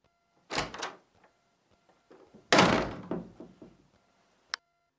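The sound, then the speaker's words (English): A door swings and shuts with a solid thunk, followed by a second heavier slam with some rattling, then a brief sharp click of the latch, with no talking. “And you're going to walk through that door, and you're going to close it behind you, and you ain't never going back.”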